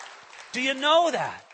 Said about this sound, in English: Well, sure, that's worthy of applause.